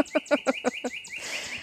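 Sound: cardinal singing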